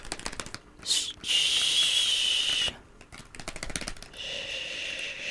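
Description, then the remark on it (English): A voice imitates a spray can while pretending to spray paint: a short hissing burst, then a longer steady pssh lasting over a second, with soft tapping and rustling clicks around it and no talking. “It's just gonna have to be pretend spray.”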